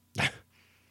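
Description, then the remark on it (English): A single hard, explosive sneeze bursts out loud, a sharp noisy blast lasting a fraction of a second before fading into near silence; the sneeze is so hard it knocks the sneezer's headset off. “Dude, I just sneezed so hard my fucking headset fell off my head.”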